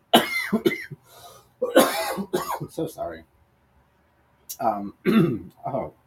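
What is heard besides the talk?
coughing and throat clearing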